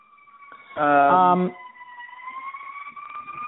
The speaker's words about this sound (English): See, all of our sirens, this is the proof to our listeners of how New York we are. Sorry about that. I live right next to a major crosstown street, so we often get fire trucks and ambulances.